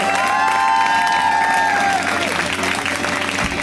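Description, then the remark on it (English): A comedy club audience gives a comedian a warm welcome applause for their first time on the show, breaking into loud, steady applause mixed with cheering and high whoops, the dense clapping holding strong for a few seconds before easing slightly. “We give them a huge, warm welcome applause, right?”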